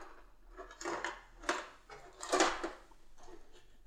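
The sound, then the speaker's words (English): Someone rummages through a drawer, with a few uneven bursts of clattering and knocking as objects shift and scrape against each other, then a quieter rustle at the end. “Excuse me while I rummage through my drawer and make sounds and noise.”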